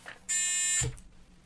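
A single loud, harsh game show buzzer blares for about half a second, then cuts off abruptly into quiet background with no one speaking.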